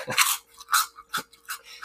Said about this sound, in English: I want to let everybody, all the folks at home know what it tastes, or I guess what it sounds like when I bite into a chicharrón.